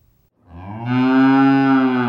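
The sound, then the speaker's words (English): A single cow on the Stone Ridge Dairy Farm in Arundel, Maine, moos once on a cold winter day, a loud, sustained low lowing that swells after a brief quiet start and holds steady for nearly two seconds, with no talking. “On a cold winter day, on the Stone Ridge Dairy Farm in Arundel, Maine, Fred Stone was more worried about his cows being cold than himself.”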